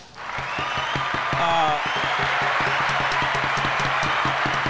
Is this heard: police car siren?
no